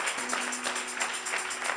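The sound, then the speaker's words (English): An audience applauds a married couple in a steady, dense wash of many hands clapping at once, sustained and fairly even in loudness throughout, with no voices standing out. “Let's applaud them.”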